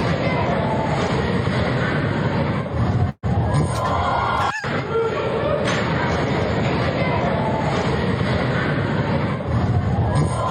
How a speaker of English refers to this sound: Crowd reaction makes the video.